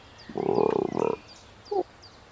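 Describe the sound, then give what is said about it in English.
A voice imitates a frog with a throaty, rattling croak lasting about a second, followed after a pause by a brief second croak. It is fairly loud, with faint chirps behind it. “That was a good frog noise.”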